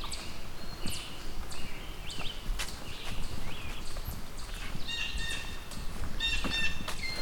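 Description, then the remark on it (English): Chipmunks give repeated hollow knocking calls in an irregular, fairly steady series against an outdoor background, with a few thin bird chirps near the end. No voices. “A lot of this knocking sound.”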